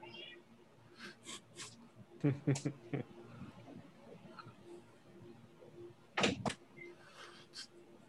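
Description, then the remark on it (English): A door is opened to let the pet Duncan out: a rattling clunk as it opens, then a sharper knock a few seconds later, over a quiet background with faint voices. “I'll shut the door because he's turned on the TV for when he cooks.”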